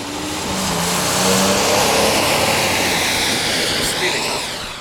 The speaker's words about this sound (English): Here come some passing cars.